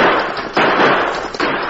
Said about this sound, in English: The frightened killer opened fire. Thunder's startled cry was punctuated by the fire of the masked man's Colts.